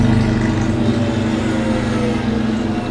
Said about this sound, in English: There's a lot of, let me think, Shadow 2.0 is coming out, the Carbon 4 came out, which I'll let the motorcycle have its moment.